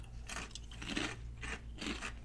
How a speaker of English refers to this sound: It's a nice solid potato chip. Classic kettle style, so yeah, a little bit of crunch. Yeah. A little thicker.